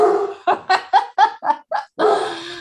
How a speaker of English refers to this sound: It's a given with our podcasts. There will be dogs barking in the background.